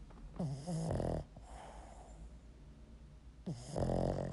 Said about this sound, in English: Listen to this fucking dog snore.